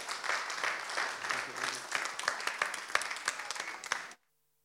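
A crowd breaks into steady applause welcoming a speaker, many hands clapping in a dense, crackling wash that holds for about four seconds, then stops abruptly into silence.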